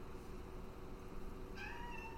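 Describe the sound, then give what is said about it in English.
A person imitates a cat's meow: one short, tonal mew near the end, rising over steady background noise. No talking before or after it. “Suna opens her mouth and just goes, meow, and then walks away.”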